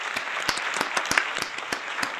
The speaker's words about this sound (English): Let's give a clap up.